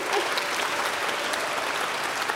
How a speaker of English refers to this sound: We had 509 kids that took. Yes, please clap. That's amazing.